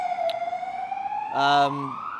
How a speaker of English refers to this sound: There's an ambulance supporting the union movement. They see the emergency as well.